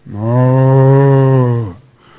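cow mooing

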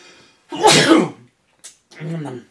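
sneeze

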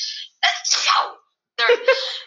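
sneeze

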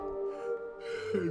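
yawn

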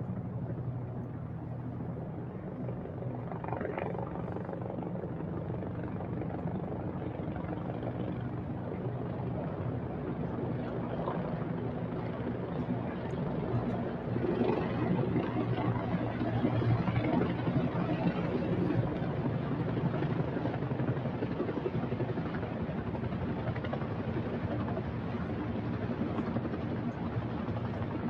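police helicopters flying overhead

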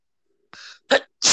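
sneeze

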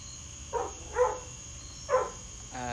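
dog barking

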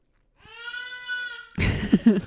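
child screaming

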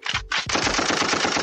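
gunshot sound effect

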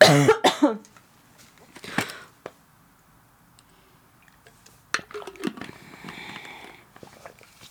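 coughing and throat clearing

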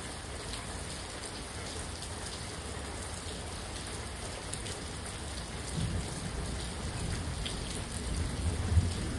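rain falling outside

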